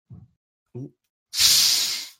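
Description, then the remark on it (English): Two brief low vocal sounds come first, then a loud burst of fizzing from ginger beer just opened, hissing steadily for nearly a second before fading. “Of yum yum fizz, specifically ginger beer.”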